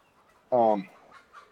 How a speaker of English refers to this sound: I hear a chicken.